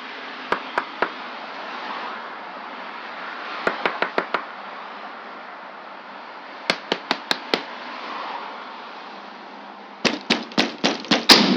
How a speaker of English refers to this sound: I didn't know what to expect when I showed up completely unannounced and knocked on the door, but I did record it. Okay, I think this is the one. Here goes.